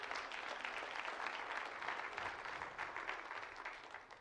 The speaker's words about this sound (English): Musicians, we so appreciate it. We thank you. Amen. Can we give our worship team a hand? Amen. Amen.